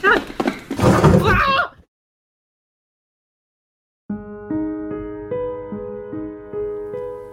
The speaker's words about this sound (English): Guys, hurry up. We got to get out of here. I hear a hinge creaking. Lady Gwyn is coming back. Run, guys.